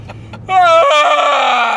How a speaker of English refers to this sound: Nothing. I'm just yawning. Okay. Hostility is present. Guy can't fucking yawn.